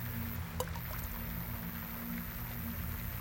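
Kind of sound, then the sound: ambience, water flowing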